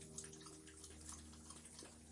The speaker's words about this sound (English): The sound of water being drunk is from my co-host